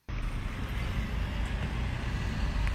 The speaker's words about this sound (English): It's mayhem. Cars, mopeds, trams, pedestrians, and so many cyclists.